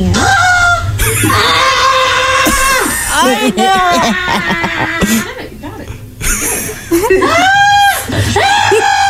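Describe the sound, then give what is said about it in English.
Cardi B squawks and yelps in a run of loud, strained, chicken-like cries while getting her tongue pierced on Instagram Live, with rising and falling pitch and brief pauses between bursts. “That's Cardi B getting her tongue pierced.”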